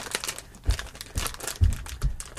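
Crinkling plastic packaging being torn open by hand without scissors, with dense crackling bursts and a few heavier thumps of effort spread across the moment, moderately loud.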